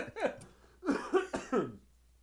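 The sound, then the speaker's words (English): An adult with a cold coughs: one short cough, a pause, then a quick run of about four harsh, chesty coughs in succession, with no talking. “I don't have COVID. I got tested a bunch.”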